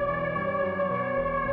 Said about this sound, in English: You hear an ear-splitting air horn. Cassio. Rip through this sort of conversation as you all stop dead.